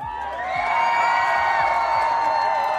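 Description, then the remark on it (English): A loud, sustained crowd cheer with whoops and shouts, swelling within the first half-second and staying at full intensity throughout, with no single voice standing out from the mass. “The crowd is going nuts. They can't contain themselves.”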